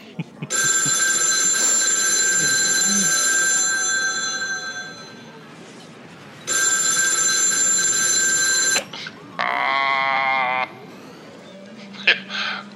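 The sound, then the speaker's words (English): A loud telephone bell rings in two long sustained bursts separated by a short pause, followed by a brief wavering, bleat-like tone. “if we're lucky, maybe George Lucas will give us a phone call. He'll call us on his big phone.”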